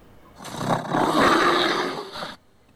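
A bear lets out one sustained, rough roar lasting about two seconds, a harsh growling rumble that swells and holds before cutting off abruptly, with no talking.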